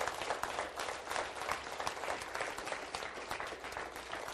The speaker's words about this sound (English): I want you to put your hands together and give Jesus a hand clap this morning. Thank you, Lord.